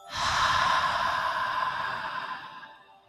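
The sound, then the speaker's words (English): A long, slow breath pushed out through the mouth after a held inhale in a guided deep-breathing exercise, a soft airy whoosh that starts quickly, holds steady for a few seconds, then gradually fades away. Fairly quiet, with no talking. “Breathing out.”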